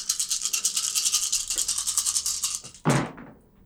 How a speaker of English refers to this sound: Wow. I rolled a lot of dice. And came up with shit.